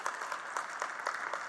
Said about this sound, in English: You can give one more hand. We'll just keep clapping all morning here.